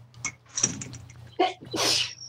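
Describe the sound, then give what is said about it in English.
A person sneezes: a short sharp intake and hiss, then a loud, bursting sneeze with a breathy, high-pitched spray at the end, over a faint steady hum. “Bless you, whoever that was.”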